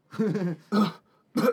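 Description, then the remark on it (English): A person fakes a hacking cough, three rough, throaty bursts with short pauses between, as if coughing a hunk of ambergris up from the throat. “And she coughs up a hunk of ambergris.”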